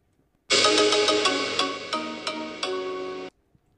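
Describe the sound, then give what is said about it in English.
A phone ringtone plays loud for about three seconds, a bright electronic melody with several stepped note changes, then cuts off abruptly into silence. No one speaks. “Who, my phone?”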